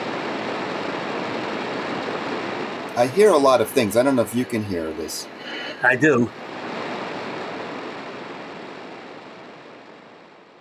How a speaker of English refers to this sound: I have a shortwave radio here. Let me turn it on. I have it at 20.5 is the specific frequency, yes.